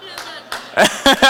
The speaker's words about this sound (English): We got a couple claps for that. I like it.